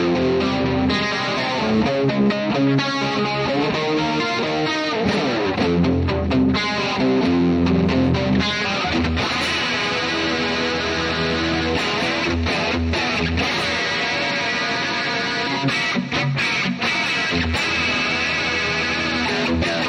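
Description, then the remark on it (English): A distorted electric guitar plays a riff loudly and continuously, with chorus-like shimmer and sustained chords, alone without any talking. “Plus, too much distortion and”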